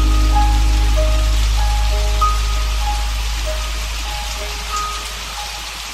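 Steady rain patters on a hard surface in a dense, continuous hiss, with a few faint sustained tones and a low hum underneath. No one speaks.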